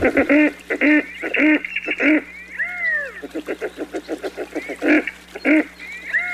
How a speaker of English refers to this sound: And the redhead has a little something in common with another songbird, as the male utters a sort of meowing courtship call, a little bit like a catbird. Here's the female redhead with the meowing male in the background.